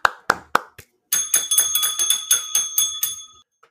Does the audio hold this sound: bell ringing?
yes